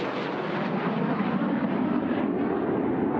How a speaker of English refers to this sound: the two planes are finally taking off for the aerial ballet, Dance of Destruction